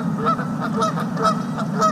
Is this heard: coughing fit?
no